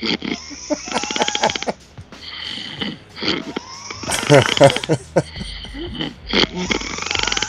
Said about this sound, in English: Oh yeah, I left the snoring on deliberately. I said I was gonna do.